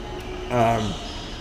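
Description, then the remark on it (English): One person lets out a single drawn-out yawn lasting about half a second, its voiced tone sliding downward before fading into quiet background noise. “But I gotta say, excuse me, quick yawn.”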